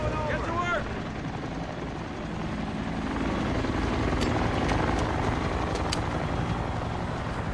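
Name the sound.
helicopter taking off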